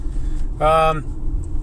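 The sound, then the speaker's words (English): A steady low engine rumble fills the inside of a moving car, constant throughout, with a short voiced sound rising briefly over it partway through. “Here in the fucking car again. You know me, doing the car episodes.”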